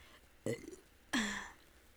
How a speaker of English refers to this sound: And today, hold on, I think I have to burp. Ugh, oh my god.